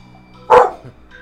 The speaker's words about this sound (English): My dog has an opinion on this, apparently. And your dog agrees that Halloween is the best holiday.